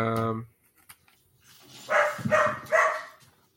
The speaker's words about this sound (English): Animals. Dogs, that's what I'm gonna say.